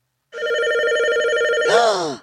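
A telephone rings once with a loud, steady electronic tone that holds for over a second, then bends into a short, wavering downward slide before cutting off. No one speaks.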